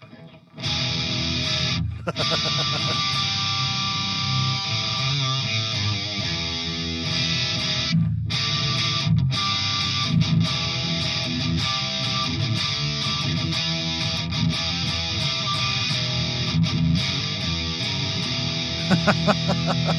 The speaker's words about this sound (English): So let's turn this thing on. You can see the wonderful, and you can also probably hear it's a little noisy. Well, it's a distortion pedal, but let's see here.